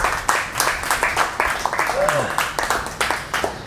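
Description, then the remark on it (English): A room full of people in Chiang Mai applauds steadily to welcome a speaker, the dense crackle of many hands clapping, with a few voices and cheers mixed faintly underneath. “But he's got a great story, and I really know you're going to enjoy him, and would you please give him a big, big round of applause.”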